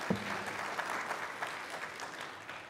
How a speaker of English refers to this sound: Let's have another round of applause for our worship band today. Great job.